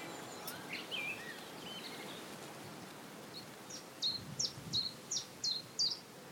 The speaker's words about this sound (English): That very mechanical dink, dink, dink you can hear is the chiff-chaff. And the reason the chiff-chaff is important is because it's the first of our summer migrants that we hear each year.